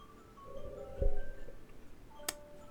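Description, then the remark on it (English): A phone alarm goes off with its standard tone, a thin, eerie run of sustained electronic tones that step between pitches, punctuated by a dull thump and later a sharp click, with no talking. “That might be my alarm.”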